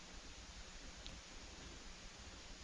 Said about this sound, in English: Trying not to be bothered by the hiss, though.